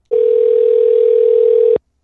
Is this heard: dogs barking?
no